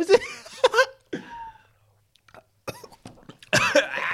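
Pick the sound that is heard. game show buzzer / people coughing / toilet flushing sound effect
people coughing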